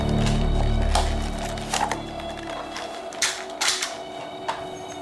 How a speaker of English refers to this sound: Someone banging on the back door.